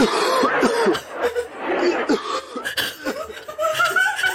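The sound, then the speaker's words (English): Repeated coughing bursts come through fairly loud, tangled with chuckling or laugh-like vocal sounds, played back from a video with a slightly thin quality. “Yes, I promise you, that's the way I look at people when they start coughing.”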